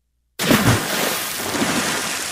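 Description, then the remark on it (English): A water drop sound effect played on a sports radio call-in show for baseball player Bobby Dorbeck: a sudden watery plunk with a brief low bubbling tone, then a loud, steady hissing wash like pouring rain that runs to the end. No one speaks. “You have that water drop for Bobby Dorbeck?”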